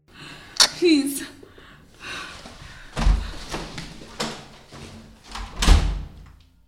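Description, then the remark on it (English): A door thuds shut, followed by several sharp metallic clicks and clunks spaced a few seconds apart as the door is locked and bolted with a keychain, with faint breathing in between. “I locked the door, bolted it with the keychain, and dragged the chair next to the study table and placed it against the door.”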